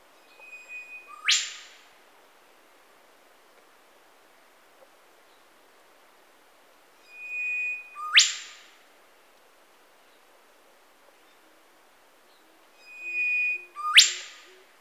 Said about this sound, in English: And they also have these kind of piercing sort of laser gun vocalizations. And so we'll play the call now. It's a brief one on the theme music, but it's got this like piercing call.